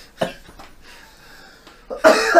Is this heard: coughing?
yes